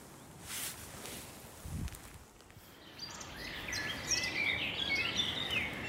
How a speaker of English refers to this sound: I'm back at the car and the birdsong is actually even louder here than it was where I was earlier, and I so wanted to get the cuckoo for you. But it was just too windy, it was dreadful. But anyway, it is here.